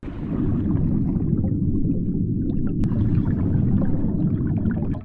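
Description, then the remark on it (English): A loud, constant churning roar of water dominated by deep low rumble, with scattered bubbling clicks and pops on top, heard fully underwater while being pounded by a waterfall. “I was all the way underwater and being pounded viciously by the waterfall.”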